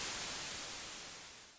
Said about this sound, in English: You're listening to White Noise.